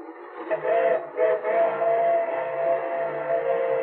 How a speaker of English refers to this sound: Oh, it's only a freight train. Watch me beat it to the water tower. It'll stop there anyway.